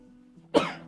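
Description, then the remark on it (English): A single sudden sneeze bursts out, sharp and loud, then fades quickly over a faint steady background hum. No one speaks. “Bless you.”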